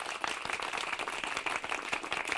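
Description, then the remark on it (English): A crowd applauds steadily after a play scene of Pyramus and Thisbe, many hands clapping in a dense, continuous patter at moderate loudness, with no voices standing out. “You hear that crowd? We're a hit.”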